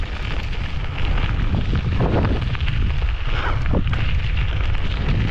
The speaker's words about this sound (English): Guys, a lot of these trails are closed and I'm by myself, so it's pretty windy though.